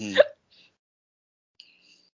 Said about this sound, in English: Sorry, there's a weird hiccup into the mic. Sorry, guys.